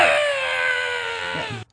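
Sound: man screaming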